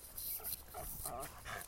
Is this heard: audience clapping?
no